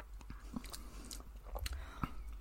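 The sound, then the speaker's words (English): Quiet mouth sounds of someone taking a little sip of a drink after a toast, with a few soft wet clicks and swallows spread over a couple of seconds against a low background hum. “Let's have a little sip.”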